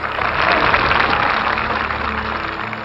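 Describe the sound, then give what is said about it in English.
A crowd bursts into sustained applause, clapping its approval at a line about Title III of a bill, a dense, steady wash of many hands clapping at once that holds at an even, fairly loud level throughout, with a faint low hum beneath. “The crowd reacted for the first time at this line, clapping its approval.”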